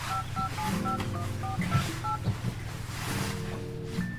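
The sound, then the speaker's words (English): A phone number being dialed to call the speaker's mother, who is not answering her phone: about ten quick touch-tone beeps in a steady rhythm, clear, over a low rumbling background, followed by a brief pause. “I guess my mother is still not answering her phone.”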